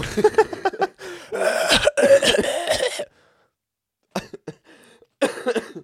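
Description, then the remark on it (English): A loud bout of harsh coughing fills the first few seconds, followed by a pause and then a couple of shorter, rougher coughs and throat-clearing bursts. “Oh, you're supposed to cough on me.”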